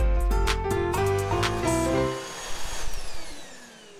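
A vacuum cleaner runs loudly with a steady motor whine and rushing air, then switches off and winds down, its pitch sinking as it fades over the last couple of seconds.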